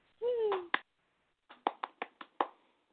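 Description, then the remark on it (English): After a short play is read aloud, a brief vocal whoop is followed by a short, sparse round of applause: about six sharp, loud hand claps in an uneven rhythm, with no talking over them. “Round of applause.”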